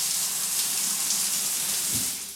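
Shower water runs in a steady hiss as a person showers in the morning to start an Eid routine, spraying continuously without a break and with no voices over it.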